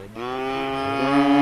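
cattle mooing

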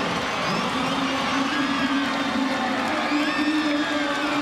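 stadium crowd cheering

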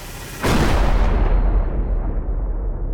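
explosion boom

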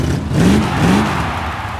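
monster truck engine revving

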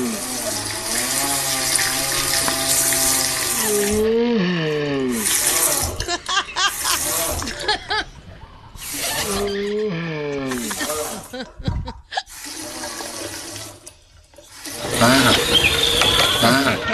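freezing water pipes moaning

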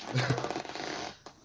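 squeaky chair creaking

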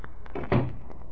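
door being closed

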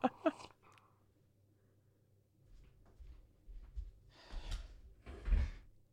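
door being opened

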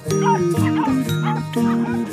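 dog barking and yipping

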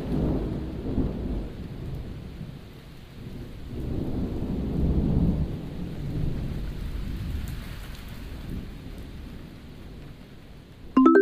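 thunder rumbling

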